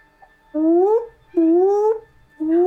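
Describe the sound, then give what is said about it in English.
A cat meows three times in succession, each call long and drawn out with a rising, whiny pitch, loud and clear with no talking over it; the last meow is cut off. “I'm hearing cat meows.”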